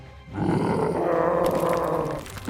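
A deep, rumbling roar, likely a voice imitating a huge toad's croak in a cavern, swells up and holds steadily for about two seconds, loud, then fades out.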